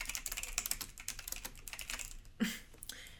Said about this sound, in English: So I hope you're ready for me to be typing, because I am.